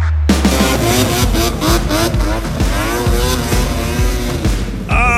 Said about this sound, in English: That was Landon sending in some snowmobile sounds.